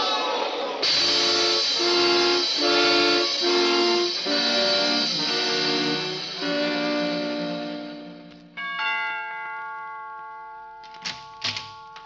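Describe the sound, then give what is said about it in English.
A loud, sustained multi-tone whistle from an approaching train blares for about eight seconds over a rhythmic chugging pulse, then gives way to a thinner whistle tone and a few sharp clanks. “There's a train coming.”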